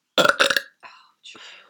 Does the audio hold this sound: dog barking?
no